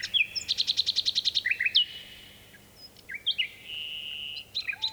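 A nightingale sings alone in a varied phrase: a rapid run of about a dozen repeated notes, then sustained whistles and rising trills, echoing across a deep valley at Funtmel Magna in Dorset, England, recorded by Richard Margoshis in 1982.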